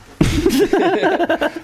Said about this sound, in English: I got the tickle coughs.